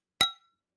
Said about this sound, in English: Sitting here with a glass of wine. Cheers.